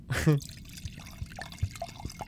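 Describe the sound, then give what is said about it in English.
Liquid is poured in a quick gurgling burst, followed by a few soft drips and faint splashes as the flow tapers off. “Nice pour.”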